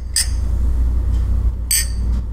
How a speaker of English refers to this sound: Cheers? We can. Do you want to cheers? All right, we're cheersing. Cheers.